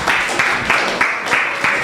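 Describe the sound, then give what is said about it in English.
An audience claps together to welcome a woman to minister a song, in a steady, fairly loud rhythm with sharp periodic accents roughly every third of a second over a dense wash of many hands. No one speaks. “Let's welcome her with a clap offering.”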